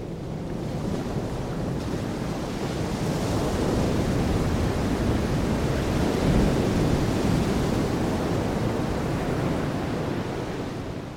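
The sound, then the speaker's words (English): Ocean surf roars steadily with no one speaking, a dense wash of breaking waves that swells slightly toward the middle before easing off, fairly loud throughout. “I recently saw a slow motion video of the crashing white waves of the ocean, and beneath its surface, the water was pristine and quiet.”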